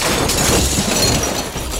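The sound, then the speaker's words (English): A loud, dense crash of a plane crashing onto train tracks in California, with shattering glass, a burst of noisy breaking and clattering debris that fills the whole moment and stays heavy for nearly two seconds, with no voices. “His plane crashed.”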